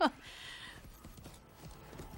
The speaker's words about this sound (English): Incredible horse riding, by the way. Amazing. Mm. Very brave horsewoman.